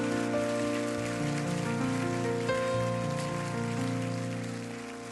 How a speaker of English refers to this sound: Would you clap your hands all over the house right now?